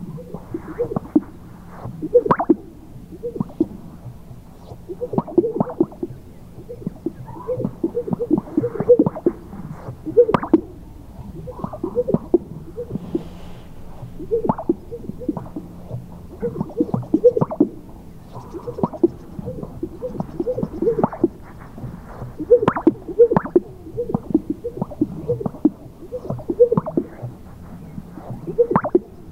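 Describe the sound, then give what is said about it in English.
Sage grouse chest sacs pop over and over in an overlapping chorus, hollow, wet, low plops with soft swishing between them, steady and moderately loud for the whole stretch, with no talking. “Finally, chest sacs, sage grouse.”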